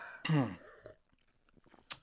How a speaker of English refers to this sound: Get a little sip.